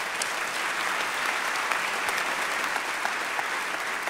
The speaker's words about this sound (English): If you were born before 1946, please stand. Now, I know we got a few more than that in here. Okay, there you go. Yes, yeah, you applaud these people.